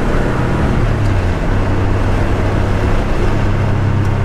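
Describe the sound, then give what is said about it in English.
A car's 3.2 engine runs steadily, a loud, continuous low rumble with a droning hum that holds an even pitch throughout. No one speaks. “I mean, it's not that dissimilar to your engine, right? It's just higher torque. Larger displacement.”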